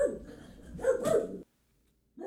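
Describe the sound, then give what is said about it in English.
Two dogs bark loudly in a rapid, overlapping flurry for over a second, fall silent briefly, then start up again at the very end. “Them dogs get carried away.”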